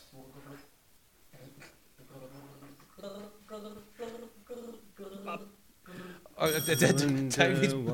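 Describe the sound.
A person gargles the nursery rhyme 'Twinkle, Twinkle, Little Star', a string of wobbly, bubbling voiced notes that rise and fall, ending in a louder, brighter burst of warbling gargle.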